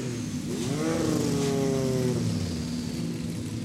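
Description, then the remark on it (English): A Rothmans-branded Porsche 917 race car, a Jochen Mass car, revs loudly as it drives out. Its pitch climbs and dips through a couple of throttle blips over a steady, deep mechanical rumble, with no voices. “I see Karen Chanduk now driving out in a Jochen Mass car, Rothmans branded 917 Porsche.”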